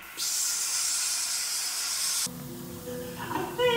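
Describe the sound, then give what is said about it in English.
A steady, bright hiss of an aerosol spray can labelled Spray Away the Gay, sprayed toward the TV screen, continuously for about two seconds, then cut off abruptly, leaving some faint tonal background noise and small clatters. “Well, I don't know if it works through the TV screen, but I'm going to give it a shot.”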